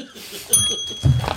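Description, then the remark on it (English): A single bright ding from a small hand bell with a smiley face on it, its high metallic ring lingering for nearly a second, with a voice murmuring briefly as the tone fades. “I feel perverted hitting this bell for this reason.”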